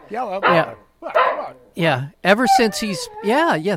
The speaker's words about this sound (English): And as always, changing the world one chew toy at a time, Mahler, the fake news dog. Wow. Got a lot of spunk in him this morning. He does.